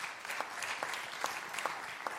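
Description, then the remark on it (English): An audience claps in a dense, steady patter for a couple of seconds, with a few sharper individual claps standing out at irregular moments, in response to being asked to clap if they remember what happened around September 2008. No one speaks over it. “Clap if you remember what happened around September 2008.”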